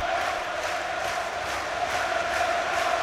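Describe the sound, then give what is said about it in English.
A big football stadium crowd at Molineux roars continuously during a Wolves match with seven minutes of normal time left, a dense, steady wall of cheering and chanting that stays loud and unbroken throughout, with no single voice standing out. “Love the noise from the crowd.”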